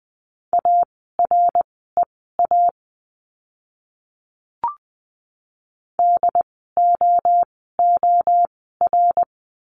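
Morse code tones at 20 words per minute from a lesson practising the letter D in words: steady mid-pitched beeps in dots and dashes, grouped into short bursts with a brief click and silent gap midway, no voices.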